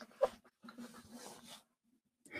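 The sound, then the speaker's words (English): A dog gives one sharp bark in the background, followed by a stretch of rough, muffled grumbling noise before it goes quiet; fairly faint. “Justin is muting himself now because his dog is in the background”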